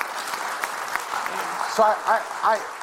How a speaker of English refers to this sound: It's the reason why we did what we did. So I guess you can clap about that. It's who we are.